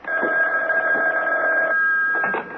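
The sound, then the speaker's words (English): A telephone rings with a steady, continuous trilling tone that stays loud for the whole moment, with no one speaking over it. “aren't you going to answer the phone?”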